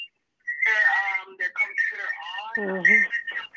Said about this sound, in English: There's a computer and phone on at the same time, so there is an echo. There we go. Much better.